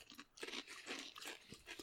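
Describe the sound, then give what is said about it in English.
Crunching of crisp bacon-flavoured snacks being chewed, a rapid series of dry, brittle crackles in a steady rhythm, fairly quiet and with no talking. “They're much more crunchy. Than a frazzle.”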